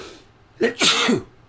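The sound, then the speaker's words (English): A single sneeze into an arm, caused by allergies, muffled: a quick sharp inhale followed by a breathy burst, with no talking around it. “I sneezed into my arm.”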